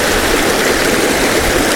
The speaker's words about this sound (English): I'm going to try and just shimmy over a little bit, sit on these rocks here without slipping in the river, because I want to get some more of this water flowing and maybe get a bit closer down, which means extending the tripod out a little bit.